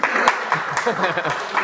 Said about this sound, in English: See, but if you ask for a round of applause, they just give it to you. It's so good.